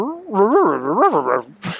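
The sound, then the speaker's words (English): A person imitates dog noises, a short run of whiny, yipping vocal sounds with swooping pitch, ending in a quick breathy burst. “dog noises.”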